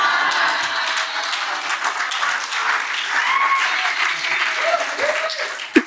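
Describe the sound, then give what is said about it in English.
Sustained audience applause as the audience claps to get the guest to put the skates back on one more time: a dense wash of many hands clapping at steady loudness for several seconds, with faint crowd murmur and a brief whoop or voice rising near the end. “Do you think if the audience claps hard enough, we can get you to put the skates back on one more time?”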